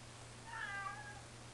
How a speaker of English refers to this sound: Sorry, people. My cat is ridiculous. Really wanting attention right now.